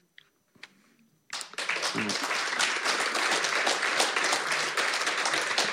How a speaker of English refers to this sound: You don't have to feel bound to clap, really.